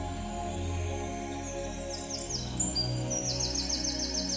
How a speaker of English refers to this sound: Notice the sounds of the birds and animals fading away as you walk.